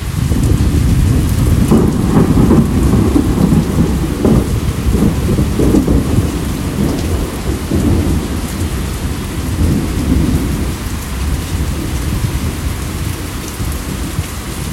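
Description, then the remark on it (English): Heavy rain pours steadily on a roof fitted with lightning rods, in the middle of a field, while deep thunder rumbles and rolls after lightning, a loud, continuous storm with no one speaking. “Thank God for the roof. Thank God for the lightning rods. I'm in the middle of a field here. Boom, flashbang.”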